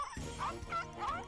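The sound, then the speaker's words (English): A dachshund barks three times in quick succession, sharp, high-pitched yaps with a slightly whiny edge, evenly spaced over about a second. “It's a wiener dog.”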